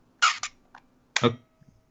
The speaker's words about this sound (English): Okay. That's the shutter firing. That sounds more like a Nerf gun than a camera.